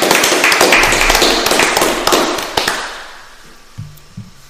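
Hands clapping in a quick, irregular burst of sharp, crisp claps, loud at first and tapering off after about three seconds, followed by near quiet with a couple of faint low sounds.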